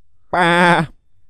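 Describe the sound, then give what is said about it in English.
A person imitates a sheep with a single loud "baa" bleat lasting about half a second, slightly wavering, with silence before and after. “Have you got Stockholm Syndrome and you've become a sheep?”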